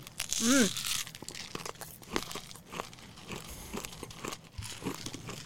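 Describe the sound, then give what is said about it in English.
Crinkly packaging rustles and crackles in quick, irregular bursts as a small individual candy box is unwrapped, with a brief voiced sound near the start and soft crunching snaps continuing throughout. “Oh, I got to unfurl mine.”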